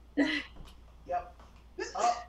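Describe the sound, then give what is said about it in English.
Three quick sneezes in a row, fairly sharp, each a short breathy burst spaced about a second apart with brief quiet gaps between them. “Bless you times four.”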